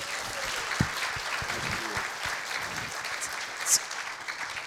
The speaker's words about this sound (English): Good to be clapped for having not done anything yet. Like, that's a real achievement.